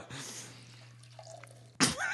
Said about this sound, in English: Whoops. That was a lot louder than I thought it was. That loud pouring beer. I'm drinking a beer. I'm drinking Oskava.